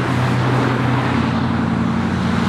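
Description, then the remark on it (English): Loud, continuous roar of road traffic heard standing next to Langston Boulevard (formerly Lee Highway) in Arlington: a broad wash of tire and engine noise with a low droning hum from passing vehicles, steady throughout with no voices. “This is what it sounds like to stand next to Langston Boulevard in Arlington.”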